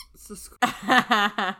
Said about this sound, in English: No squeaky toys during recording. This should be a rule.